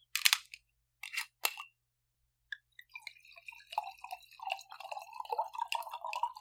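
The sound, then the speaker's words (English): A few sharp crackling clicks, then wine from a twist-off bottle with a blue label glugs steadily into a glass, extra full, the gurgle rising in pitch as the glass fills. Fairly quiet, with no voices. “I'm pouring extra on purpose.”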